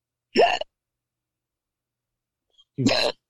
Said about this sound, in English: God bless you. No, I'm hiccuping.